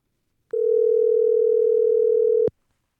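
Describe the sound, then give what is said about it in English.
A steady telephone dial tone for an outgoing call hums loudly for about two seconds, a single unbroken tone starting and stopping abruptly, with nothing else around it. “So why don't we give him a call?”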